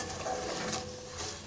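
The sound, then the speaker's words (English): Steady, crackling sizzle of garlic frying around pork in warm oil with the heat off, a continuous soft hiss with small pops throughout, moderately quiet, with no voices. “The garlic's just going to sizzle around the pork.”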